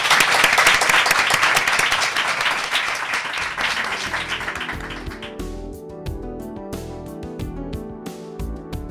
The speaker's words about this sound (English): Let's have a big round of applause for our guests.